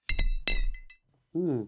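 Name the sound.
glasses clinking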